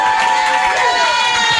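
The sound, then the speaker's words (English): A loud, steady roar of an audience cheering and whooping, with high sustained shouts riding over a dense wash of crowd noise for the whole moment. “Were you waiting for applause?”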